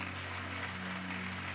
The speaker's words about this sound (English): Come on, if you believe that, let's clap our hands and say a good amen.